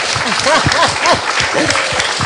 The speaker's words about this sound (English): And please just put your hands together for her first.